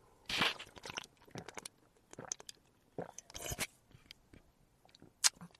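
Wet sipping and swallowing from a just-opened can of cold Café Glacé ready-to-drink coffee, the first sips, a handful of short slurping bursts at an irregular rhythm with quiet gaps between, no talking.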